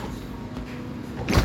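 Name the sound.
fridge door opening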